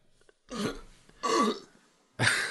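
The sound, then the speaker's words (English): Three loud burps in a row, each a rough, rumbling belch lasting about half a second, separated by short pauses, with no talking. “Don't burp into the.”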